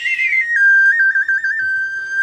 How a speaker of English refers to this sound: We're actually only doing answers in whistle form only, so you are all set.